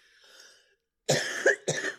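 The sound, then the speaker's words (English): A soft breathy sound fades out, then after a brief pause two sharp, loud coughs burst out, the second shorter than the first, with no talking; the person coughing is recovering from the flu. “Hang on, I have a cough.”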